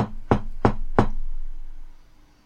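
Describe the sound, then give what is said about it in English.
Four firm knocks on a door in quick succession, starting with a light tap followed by three solid raps at an even pace, clear with a short fading resonance afterward. “As you're standing there looking at his dead body, you hear a knock at the door.”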